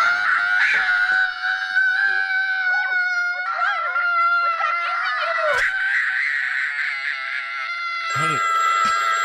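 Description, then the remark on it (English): A child screams shrilly and without pause for about nine seconds in a horror film clip, the piercing pitch wavering slightly, loud, with a brief quiver near the end. “Here's a horrible kid scream.”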